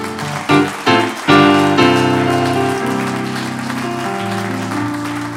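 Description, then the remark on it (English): A church audience gives a hand clap unto the Lord, clapping steadily in a dense, continuous wash of applause, mixed with loud sustained organ-like chords that strike a few times early and then hold. No one speaks. “Tell you what, let's just give that hand clap unto the Lord, shall we?”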